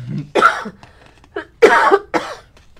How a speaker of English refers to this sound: I must cough now. Thank you.